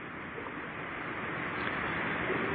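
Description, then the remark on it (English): Steady rain pours down on a roof, a dense, even hiss that stays constant and fairly loud throughout, with no voices. “We can hear the rain on the roof”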